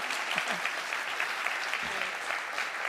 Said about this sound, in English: One more round of applause for our judges.